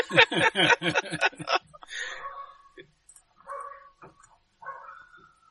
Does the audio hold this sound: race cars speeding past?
no